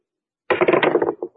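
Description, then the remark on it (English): Dice being rolled, coming up seven, clatter and rattle in a quick burst of hard clicks, then tumble to a stop with two short final knocks. Sharp, fairly loud, with no voices. “Now, what are the odds against my rolling it again? Twice in a row?”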